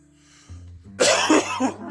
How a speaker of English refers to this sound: All right, I'm good. I don't want no more of that. I'm coughing way too much.